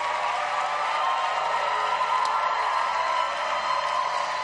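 A church audience claps steadily for several seconds after a prayer, a dense, sustained wash of many hands applauding together with no voices standing out.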